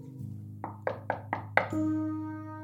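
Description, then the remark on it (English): Five quick, evenly spaced knocks on a door, moderately loud, followed by a steady sustained tone over a low background hum. No one speaks. “Hold on. I gotta go. Someone's at the door.”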